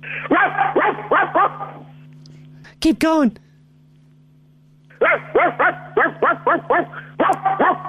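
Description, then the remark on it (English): A therapist sitting in an office voices a quick run of deep, gruff woofs in imitation of a big dog barking, pauses while someone briefly speaks, then resumes with another rapid series of loud barks. “Why don't you, bark like a dog for me?”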